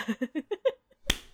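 One sharp, bright hand clap rings out alone after a run of five short, evenly spaced vocal syllables, leaving a brief fading tail; the start of a slow clap, heard over Zoom audio.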